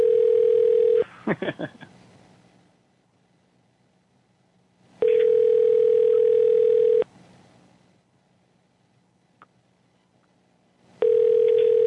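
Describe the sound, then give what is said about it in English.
A steady, harsh buzzing tone on a telephone line sounds in loud two-second bursts separated by about four seconds of near silence, with a few sharp clicks and clatters after the first burst. “Sucks about the buzzing, man.”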